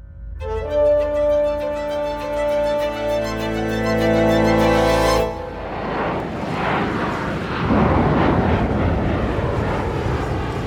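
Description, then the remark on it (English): A passenger plane's steady, droning engine hums loudly with layered tones for several seconds, then gives way to a rushing, turbulent roar of wind and rain-like noise as it flies south over Washington State through a storm with hail and thunder, November 1971. “A passenger plane flies south over Washington State. Outside, a storm rages.”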